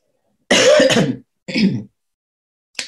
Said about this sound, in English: I still have a little bit of a cough, sorry.